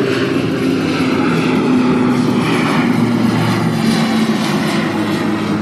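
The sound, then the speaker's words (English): An old propeller crop-duster plane drones loudly and close overhead during a baseball game, its steady low engine roar with a throbbing buzz filling the whole stretch without letting up. “That was right over our heads.”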